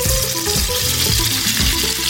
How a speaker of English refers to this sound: The frying will give the sandwich a nice crispy texture, not unlike the Monte Cristo.